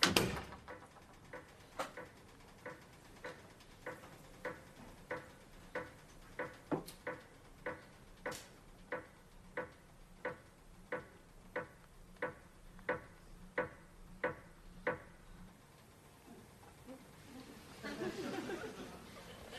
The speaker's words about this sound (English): How this ends is quite nice, because they go up to bed and Victor's the last to leave, turns off the lights, and the camera slowly pans onto the grandfather clock. It's making quite a loud ticking noise.